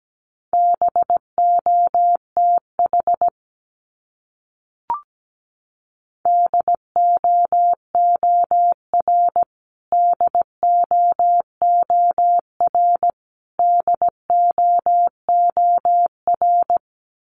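Morse code sent at 17 words per minute, repeating words from a list of the top 300 words: a steady, mid-pitched beep keyed into short and long pulses, grouped into words separated by brief pauses, with a single soft click partway through.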